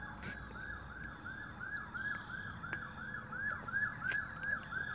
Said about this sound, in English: Oh my God, y'all. Like, I would just hear it. Y'all hear them sirens?